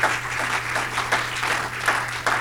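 A group claps their hands unto God together in a steady, dense patter of many hands, with periodic swells in loudness over a low constant hum; no one speaks.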